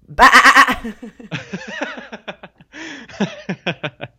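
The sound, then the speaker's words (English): A voice imitates a sheep, letting out a loud, wavering bleat of rapid pulses, followed by further talk and laughter-like bursts from other speakers. “Are you calling me a sheep?”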